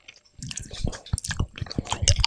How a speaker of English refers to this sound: Oh, you're chewing it?